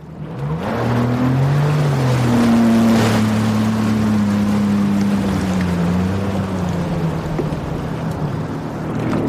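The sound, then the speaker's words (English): A jet ski engine drones steadily over the water, its low humming pitch wavering slightly up and down, with a constant wash of spray and splashing underneath. No voices are heard. “Let's go get on some jet skis.”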